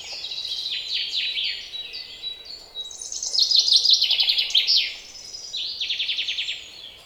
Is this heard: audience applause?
no